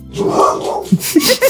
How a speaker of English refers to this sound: I can't with the growling. Laza, stop. No. No! Why are you barking at me?